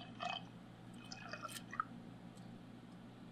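Quiet, uneven trickles and small glugs of whisky being poured from a bottle into a glass, with no talking, ending in a sharp knock.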